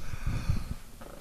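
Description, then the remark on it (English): A sharp, loud sneeze bursts out right at the end, after a moment of rough, wheezy breathing that sounds like the inhale building up to it. “Bless you.”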